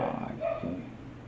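A dog gives a couple of short, low barks in the background, fairly faint beneath a muffled murmur of voices.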